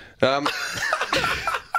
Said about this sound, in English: Right, stop coughing.